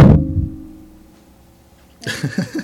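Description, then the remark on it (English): A single heavy thud of an object set down on a table, with a short low rumbling decay, then quiet before people start talking near the end. “That made the worst sound. On here? Like, I know. Putting it down on the table.”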